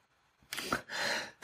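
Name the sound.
sneeze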